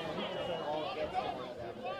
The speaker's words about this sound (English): And hear the dugout. The guys in the dugout are really cheering on Nate right now.